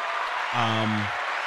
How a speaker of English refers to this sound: I guess applause for that.